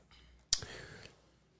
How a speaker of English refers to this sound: Tell your stomach to be quiet when I'm talking. I wanted to go... It's all... It's clicking.